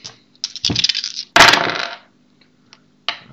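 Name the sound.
dice being rolled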